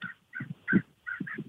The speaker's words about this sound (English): Those birds are really loud, too. Yeah. It's kind of a little nature area out here.